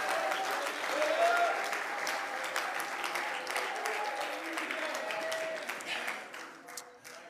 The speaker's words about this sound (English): Oh, let's clap our hands again and praise him tonight.